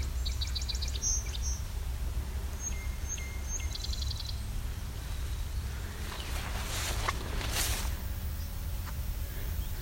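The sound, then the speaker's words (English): Bright, high bird song phrases of an indigo bunting ring out over a steady low rumble of wind or traffic, with a few quick chirps and paired notes. “Indigo bunting.”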